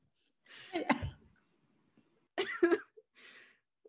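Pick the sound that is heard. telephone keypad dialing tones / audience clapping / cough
cough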